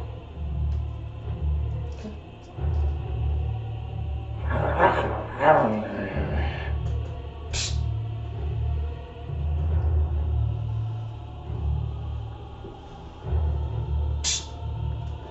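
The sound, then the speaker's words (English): A person imitates a big growl with their voice, producing a deep, loud, rumbling sound that continues throughout and swells into a harsher, rougher burst partway through. “Then I'm going to make a loud, non-discernible speech, instant sound. 30 feet away from me towards the big enough. Just like a big growl or something.”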